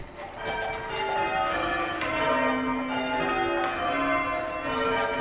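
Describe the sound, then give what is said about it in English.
Large tower bells, each rung by a person pulling a rope, ring one after another in change ringing by a small group of amateur ringers at the University of Chicago, their rich overlapping tones sustaining and blending into a continuous resonant peal with no voices present. “A bunch of people stand around in a circle, and each one holds a rope that connects to a bell up in the tower. They ring their bells one after another, making a waterfall of sound.”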